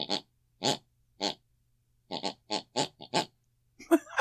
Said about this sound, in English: with the sound of my elderly mother snoring distantly from the room next door